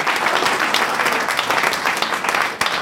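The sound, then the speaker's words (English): Steady applause for the evening's speakers from a sizable audience at an event organised by the Canberra Hub, many hands clapping at once in a dense, continuous patter that stays loud and even for a few seconds. “can we round of applause?”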